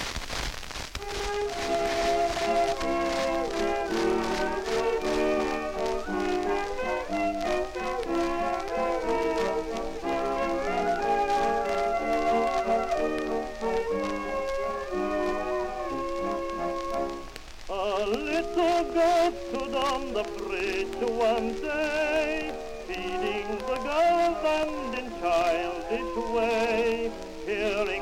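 An old 1906 ballad recording: a steady instrumental introduction gives way, about two-thirds through, to a wavering solo singing voice, with constant crackle and hiss from the worn disc underneath.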